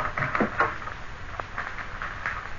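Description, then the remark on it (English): A service door is opened to fetch milk, with morning papers left outside it, giving a few clunks and a rattle of the latch, followed by a softer knock as it swings, with no one speaking. “Just open the service door there.”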